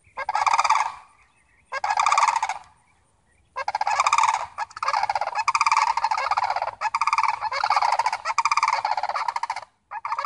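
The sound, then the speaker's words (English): Loud, shrill, rattling calls from a tall, raptor-like gray bird of the open fields of Florida ring out in repeated bursts, first short and spaced, then nearly continuous, with no talking. “The tall, raptor-like bird that walks its way through the open fields of Florida makes a sound so loud, so shrill, so primordial that I can almost hear its dinosaur ancestors echoing from their slim beaks.”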